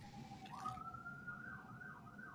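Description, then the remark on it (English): A police siren wails steadily, its tone sliding and wavering over a low rumble of background noise, with no one speaking. “I hear police sirens. That's on my end.”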